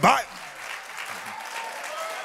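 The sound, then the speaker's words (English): A church audience clapping their hands in praise during a sermon: a loud burst at the start settles into steady, dense applause that carries on throughout, with faint voices mixed in underneath. “And the Bible says, clap your hands, O ye people.”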